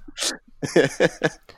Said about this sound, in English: Sorry, I'm coughing and muting myself.